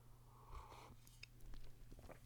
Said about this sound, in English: I'm gonna take a sip of tea real quick, if you don't mind.